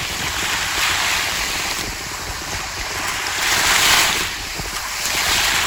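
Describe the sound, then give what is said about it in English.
Sea waves wash and surge continuously, swelling louder in broad, hissing pulses, with gusty wind buffeting the microphone throughout. No voices are heard. “So what we have here is the unmistakable sound of the sea.”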